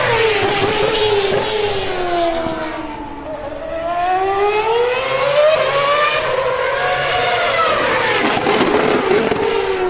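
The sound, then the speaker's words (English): A Force India Formula One car screams past at the end of the start-finish straight, its loud, high-pitched engine whine dipping in pitch then climbing again, with crackles and pops on the overrun and no voices. “That was a Force India at the end of the start-finish straight.”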